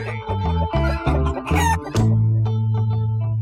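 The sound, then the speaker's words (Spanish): A hen clucks in a quick run of loud, clipped notes, then breaks into a drawn-out cackle that trails off, with no talking. “Cacareé.”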